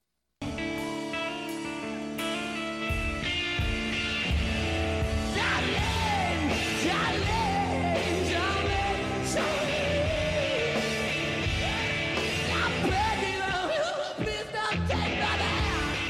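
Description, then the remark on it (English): Loud, dense rock music from a live recording of a cover song, with a raw, strained vocal screaming and wailing in sliding pitches over driving guitars and drums, sustained at full volume for the whole stretch. “First it plays the screaming part.”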